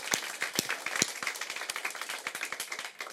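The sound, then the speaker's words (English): A crowd applauds steadily for people who were baptized that day, dense overlapping claps forming a continuous rattling wash with a few sharper, louder hand claps standing out, sustained for the whole few seconds without voices. “So give them another round of applause.”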